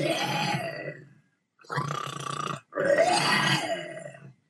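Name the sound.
voice imitating loud snoring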